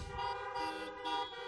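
car horn honking

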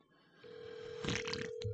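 phone call ringing

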